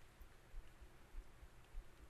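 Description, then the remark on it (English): Heavy rain pours steadily outdoors at night in Ohio, heard from a porch, as a soft, continuous hiss, fairly faint, with low dull thumps recurring beneath it. No voices. “It is really raining outside in Ohio tonight. I mean, it is pouring rain.”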